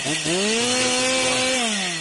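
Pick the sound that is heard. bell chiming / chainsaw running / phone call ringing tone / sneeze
chainsaw running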